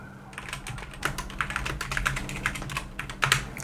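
Rapid, uneven clacking of keys on a computer keyboard, moderately loud, with bursts of keystrokes over a steady low hum and no voices.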